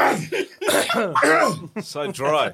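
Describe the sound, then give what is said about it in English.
A few people clear their throats together, a cluster of overlapping, rasping vocal bursts that start and stop in quick succession over a couple of seconds. “Can't even clear your throat.”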